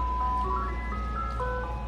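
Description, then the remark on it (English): A purple ice cream truck's tinkling electronic jingle plays a simple stepwise melody of sustained tones over a low, steady engine rumble, clear, with no one talking. “I look at that truck like the devil truck, because I'm just like, this is all kind of toxins in there. It's selling to the kids.”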